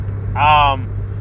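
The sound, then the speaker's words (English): A steady low engine rumble fills a car interior, with a brief voiced sound rising over the hum midway before the drone carries on alone. “I'm actually doing it in a car after GCW's Bloodsport 2 last night.”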